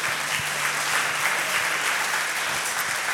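Steady applause from a church audience giving Jesus a clap, a dense wash of many overlapping claps sustained evenly for a few seconds with no voices standing out.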